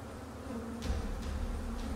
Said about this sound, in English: The humming was strong, almost like a buzzing. It was as if I could feel it vibrating against the side of my face.